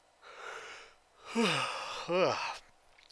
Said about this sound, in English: if you keep yawning, good. Yawns are contagious. And I'm infecting you.